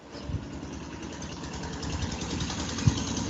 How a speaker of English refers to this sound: That sounds like someone driving by in a car.